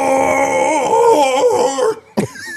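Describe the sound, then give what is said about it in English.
A voice imitates a Bigfoot call: a strained, wavering howl-like snort with cracking harmonics that falters for about two seconds, breaks off, then ends in a short harsh burst. “Yeah, that was a wounded snort. A wounded Bigfoot.”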